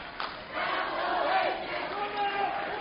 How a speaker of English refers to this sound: Tough break for the Trojans there. I'm not sure about that one either. The crowd definitely doesn't like it behind us.